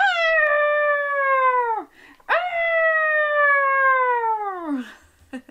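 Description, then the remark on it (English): A child's voice imitates an elephant trumpeting with two long, loud, high-pitched wails, each held steady before sliding downward at the end, separated by a short pause. “Can you get your trunk out in front of you and make an elephant trumpeting noise?”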